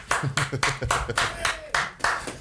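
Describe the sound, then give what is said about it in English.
Several rounds of hand clapping, sharp and bright, landing in a fairly steady rhythm of about seven claps, with voices murmuring underneath. “Why didn't you clap, bro?”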